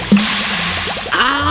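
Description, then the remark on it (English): Eyes plop into bubbling, fizzing acid with a soft splash, followed by a steady hissing bubble and a few gurgles, and a brighter sizzle near the end. No one speaks. “Now then, drop them in this bubbling water.”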